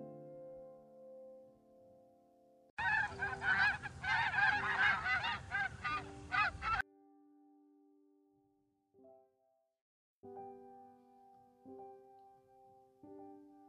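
A flock of geese honks loudly and busily for about four seconds, a dense overlapping clamor, set between soft, sustained musical tones before and after.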